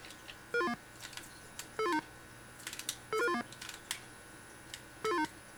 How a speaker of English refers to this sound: That little chime means I finished a section of the room, or the building.